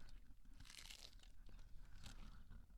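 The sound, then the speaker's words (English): Crisp crunching of a Dorito tortilla chip being bitten and chewed, a steady run of sharp crackly bursts with no talking. “Chewing ASMR.”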